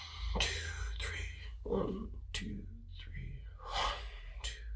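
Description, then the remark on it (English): Slow, deep meditative breaths drawn in and pushed out, several airy bursts in a loose rhythm, with faint whispery breath noise and a low hum underneath. “Shh. Quiet. Shh. Let me hear you breathing.”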